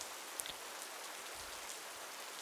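Steady rain patters down in a soft, continuous hiss, with a few brighter drop ticks standing out early on. No voices, just an even, quiet wash of rainfall throughout.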